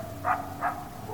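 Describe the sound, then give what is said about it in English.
Two short barks from a dog, spaced about a third of a second apart, over a steady low engine rumble. “That's a dog.”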